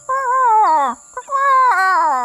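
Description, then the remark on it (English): A voice imitates a bird call with two loud, wavering wails that slide downward in pitch, separated by a short pause, sounding almost like a yowling cat. “I don't know any bird calls. Let's try this. Sounds like the, Phrygian honeytail.”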